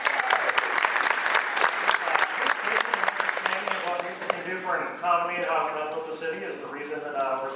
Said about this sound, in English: Applause for Mayor Tommy Battle.